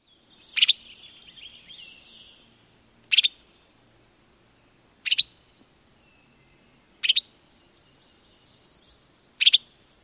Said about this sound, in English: I've also heard this call described as sounding like a burp, which you can remember the Western Tanager is red-faced and sounds like a drunken robin, so it's burping.